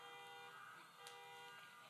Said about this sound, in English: They're honking. So somebody will find their horn.